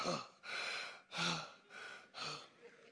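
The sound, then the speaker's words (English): A voice imitates sexual, sensual heavy breathing with about five loud, breathy inhales and exhales in a steady rhythm, with no words spoken. “That's that sexual, sensual, heavy breathing.”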